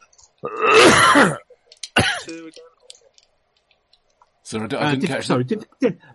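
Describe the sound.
A loud cough rasps out, followed by a short sharp throat clearing, then after a brief pause a longer, voiced, gravelly clearing of the throat.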